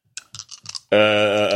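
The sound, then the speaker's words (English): Dice clatter in four quick rattling bursts as a player rerolls, needing to beat a 6, then a loud, bright sustained tone rings out and holds steadily to the end. “All right, come on, dice.”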